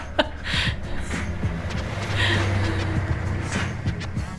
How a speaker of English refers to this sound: What? Wait, shit. I gotta get the highway sound down.